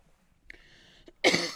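A brief raspy throat sound, then a loud, harsh cough burst near the end. No one speaks.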